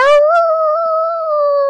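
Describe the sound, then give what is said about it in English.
A person imitates a wolf howl: one sustained, fairly high, loud wavering note held for about two seconds with no talking over it. “Did it sound like a wolf?”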